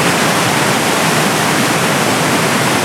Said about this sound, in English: But as I've made my way upstream, I've reached the apex of the roar.